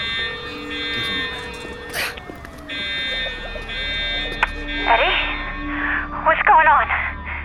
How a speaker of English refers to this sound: What's that alarm?